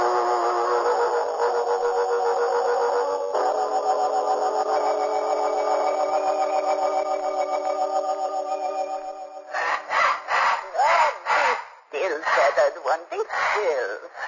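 A steady, humming musical tone plays for several seconds, then a pet bird breaks in with a series of loud, harsh squawking calls in quick, irregular bursts.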